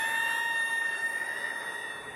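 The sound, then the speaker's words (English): A chill wind whistling through the shamrocks on a cold night, 15 degrees below with slanting rain, in a steady, high, thin tone that holds without a break for a couple of seconds, easing slightly toward the end, with no voices. “I don't know if you heard that, Diona, but it sounded to me like a chill wind whistling through the shamrocks.”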